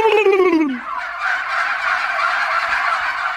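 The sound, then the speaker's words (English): A man gives a short descending call to his turkeys, and they answer with a loud, continuous chorus of gobbling together, a dense rattling clamor that fills the rest of the moment with no talking. “Give me that call to the turkeys.”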